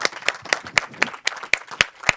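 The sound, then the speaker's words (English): An audience applauds a panel after a talk about water, with crisp, evenly spaced hand claps, about nine sharp claps in just over two seconds at a steady pace, fairly loud with no talking over it. “So I hope you will join me in giving a massive round of applause to our fantastic panel.”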